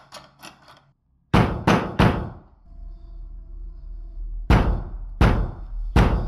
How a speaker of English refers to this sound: I think the older sister's still up in the room, and it sounds like someone's turning the knob, trying to get the door open, and then really loudly starts banging on the door.